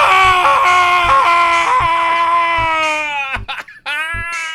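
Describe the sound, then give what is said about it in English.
A loud, agonized shriek drawn out into a long wailing scream, nearly unbroken, faltering briefly near the end before the wail resumes. “You see, a profoundly agonizing death will always encourage one to shriek and howl and wail and scream and bellow.”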